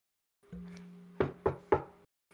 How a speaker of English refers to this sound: you hear a knock at your door.